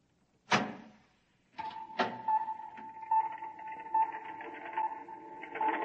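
A door opens with a sharp clunk, then after a short pause another thud and a steady mechanical whirring hum that continues to the end, fairly loud.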